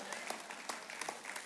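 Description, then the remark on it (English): An audience at Fellowship Bible Church applauds a staff member's 27th year on staff, many hands clapping in a dense, steady patter with a few sharper claps poking through, holding at an even level without pause. “I wasn't looking for applause, but thank you.”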